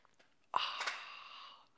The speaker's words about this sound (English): Join me now for the unparalleled pleasure of the dopamine of the day, the thing that makes everything better. It's called the simultaneous sip, and sometimes it's better if you have an actual cup of coffee.